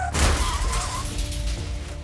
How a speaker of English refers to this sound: John hopped in the driver's seat, put it in gear, and promptly smashed into the back of another car.